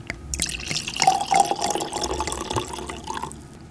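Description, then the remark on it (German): Wine from a bottle of Château de Fleury 2019 pours steadily into a glass for a few seconds, a gurgling splash whose pitch rises slightly as the glass fills, with no voices. “So, öffnen wir doch eine Flasche Château de Fleury 2019. Trinken wir ein sogenanntes Glas der Freundschaft.”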